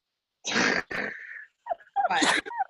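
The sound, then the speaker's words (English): Loud sneezing: two forceful bursts in quick succession, a brief sniffly pause, then a final explosive sneeze, with no talking around them. “Bless you.”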